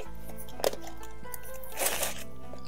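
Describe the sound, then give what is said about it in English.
Crisp crunching of ice from a drink being chewed, a sharp bite followed a moment later by a longer grinding crunch, over a low steady background hum. “There she is, crunch it on ice.”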